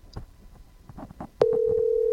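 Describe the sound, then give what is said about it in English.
A phone line's ringback tone, on a call the speaker has placed to his brother-in-law, cuts in abruptly partway through and holds as a loud, steady electronic hum to the end, preceded by faint, scattered background sounds. “No, I'm just calling. He's ringing.”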